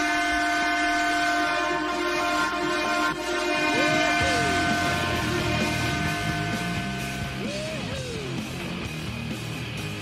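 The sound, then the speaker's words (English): A loud train horn sounds downtown in long sustained blasts over the steady rumble of a passing train, its harmonic tones holding across the whole stretch with no one talking. “There's another horn for you. Well, there are train horns in downtown.”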